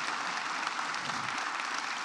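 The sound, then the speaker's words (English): Steady applause from a crowd for Titans player Jeffrey Simmons, a dense wash of many hands clapping at once, sustained evenly at a moderate level for about two seconds with no voices over it. “You know, we you can clap for you can that clap for sure.”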